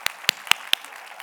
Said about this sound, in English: Let's just clap. Right? Yeah?